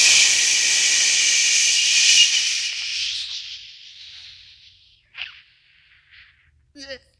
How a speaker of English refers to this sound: So what happens is you breathe in really deep and then you exhale as long as you can.